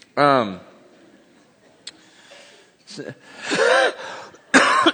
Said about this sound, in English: excuse me, fighting a cold. Anyone else fighting a cold? And just hang out and get sick together. You know, you start talking, then it starts to cough, and you hold it back, and you go,